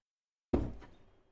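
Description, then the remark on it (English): A single door shuts with a firm thud after a moment of silence, its low, resonant knock fading out over the following second. No voices are heard. “Who's coming in my door?”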